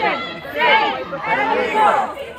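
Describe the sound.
A crowd of abortion-rights protesters in front of Justice Roberts' house shouts together, chanting "Keep abortion safe and legal" and "You don't care if people die", many loud overlapping voices rising and falling in rhythmic chant-like surges, with a steady murmur of chatter underneath.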